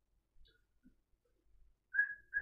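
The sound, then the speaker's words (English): After a near-silent stretch with a few faint soft bumps, someone whistles a short, steady tune, a clear high tone that breaks briefly and resumes. “I approach. I start whistling.”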